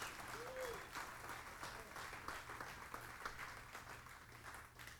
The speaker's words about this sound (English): And I am so blessed for this church. Give this church a big round of applause. Amen.